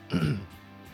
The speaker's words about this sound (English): excuse me, I'm getting a little bit of a cough here.